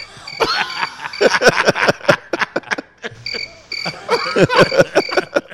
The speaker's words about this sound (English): And you know what you hear? Crickets. There you go. Crickets. Hey, hold on. Did you say crickets? Yeah.